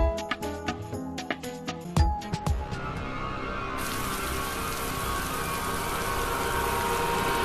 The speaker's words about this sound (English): And bam! On cue. Yep. Blood rain.